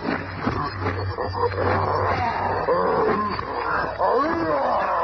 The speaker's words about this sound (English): A ton of fighting fury in the form of a maddened gorilla springs on the thing.